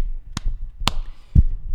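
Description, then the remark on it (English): Three sharp claps land at a steady, even pace about half a second apart. The last one sounds duller and more muffled, and there is no talking. “It's clapping because the NFL trade deadline this year sucked.”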